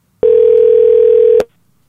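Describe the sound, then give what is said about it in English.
A loud, steady telephone dial tone hums for just over a second, then cuts off abruptly with a sharp click, leaving near silence, as a call to a friend is placed from a studio. “So now it's time for a segment of the podcast called Phone a Friend, where we do just that. Phone a friend.”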